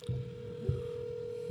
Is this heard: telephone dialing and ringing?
yes